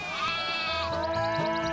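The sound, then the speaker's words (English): A sheep on the U Bet Ranch bleats loudly, a single drawn-out wavering cry with strong harmonics, followed by a shorter trailing bleat, with no voices present. “Well, maybe it's not my sheep farm.”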